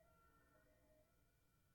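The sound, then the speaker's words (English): An unusual warning siren sounds as steady, sustained overlapping tones that hold their pitch without rising or falling, over a low rumbling background, with no voices. “That was a weird siren. That's not like the usual sound of it.”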